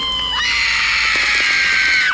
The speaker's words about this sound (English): The apartment filled with the stench of burning flesh and our combined screams, mine terrified, hers enraged.